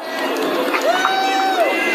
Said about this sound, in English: See, the crowd's not... The crowd's coming. That's the crowd.